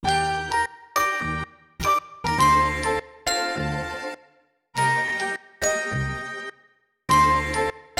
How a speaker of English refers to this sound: So I kind of arranged these bells and vibes into a new melody with a new rhythm, much different from the one in the original song, which you'll hear.